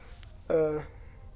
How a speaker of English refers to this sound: Sorry, I keep yawning.